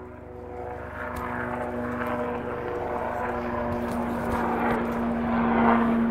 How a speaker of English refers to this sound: A CH-53 helicopter thumps across the valley at eye level.